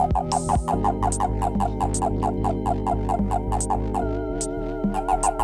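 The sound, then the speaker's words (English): A Japanese common toad's release call, made when it is grabbed and wants to be let go: a fast, steady stream of throaty, buzzing chirps, roughly four or five per second, loud and continuous throughout, with no voices. “As such, for an angrier version, please enjoy this sound of the toad's release call. That is, the sound it makes when it's being grabbed and wants to be let go.”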